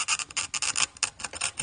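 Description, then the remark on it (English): A glass cutter scores a glass bottle with a rapid series of bright, gritty scratches, about five or six per second, steady in loudness and fairly hissy, with no voices. “You want to hear that cracking sound.”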